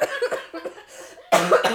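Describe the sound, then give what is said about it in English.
A person coughs in a few quick, breathy bursts, then lets out a louder, harsher cough near the end, with no talking. “I can't cough. I can't laugh. Oh, cough.”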